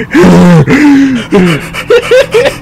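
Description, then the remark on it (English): A voice imitates heavy, rasping breathing: a few long, loud voiced gasps, then a quicker run of three short panting breaths, with no other talking. “When I didn't know was another ghost was under my bed breathing very hard.”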